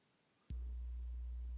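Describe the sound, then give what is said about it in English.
After a brief silence, an SMPTE intermodulation distortion test tone starts abruptly: a loud, steady low hum paired with a thin, piercing high whine, held constant to the end with no voices. “I don't know what IMD-SMPTE is, or IMD-7350, but I wonder if I can play that. What happens if I play it?”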